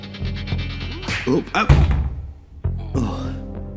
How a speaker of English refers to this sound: The chieftain's been launched back right against the door of this cupboard, basically shutting this door.